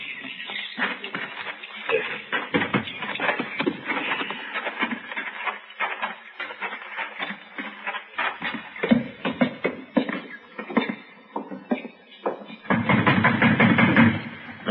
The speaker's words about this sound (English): Banging on the door.